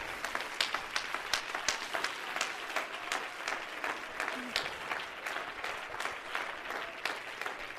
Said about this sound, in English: I need for about 10 people to jump to your feet and clap your hands in affirmation that my hope is in Him.